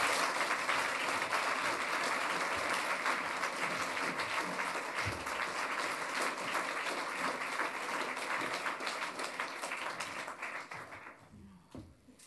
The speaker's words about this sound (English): We're very excited to have her. So let's give a big round of applause to Hollie McNish.